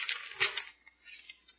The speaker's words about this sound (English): They changed my life with a piece of paper. Just plain old piece of paper. And what they did, for the benefit of the recording, is they tore just a hole in the middle of the piece of paper.